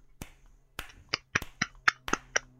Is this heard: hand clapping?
yes